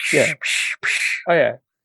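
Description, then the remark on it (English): A voice imitates a toy ray gun with four quick, loud bursts of buzzy, hissing noise, some with a rough voiced tone, before falling silent. “The ray gun just lights up, and then it makes that toy sound of...”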